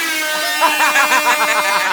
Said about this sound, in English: Yeah, I had to air horn and all that.